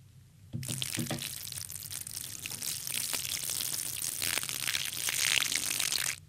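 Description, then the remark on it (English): A champagne sound effect: a steady fizzing pour with bright crackling bubbles that starts abruptly and continues for several seconds before cutting off, with no voices. “That's supposed to be the sound of champagne.”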